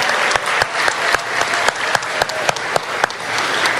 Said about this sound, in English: so give the ladies of Resolutions a round of applause.